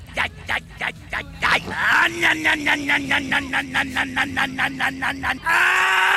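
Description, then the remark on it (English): A man's loud, strained scream plays from a video clip being replayed, broken into rapid rhythmic pulses, then held as one sustained, raw cry that ends in a burst of harsher noise. “Wait, play it again. I want to see the, third cut in of him just screaming.”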